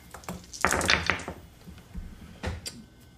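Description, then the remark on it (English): Dice rolled for a piloting check in a tabletop game clatter across a tabletop in a quick burst of sharp, rattling clicks, then a couple of softer taps follow after a brief pause. “Would you like to roll some dice?”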